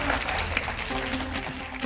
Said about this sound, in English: So I just want to say thank you so much for you all for being on this panel and being able to share your story a little bit. Big round of applause for you.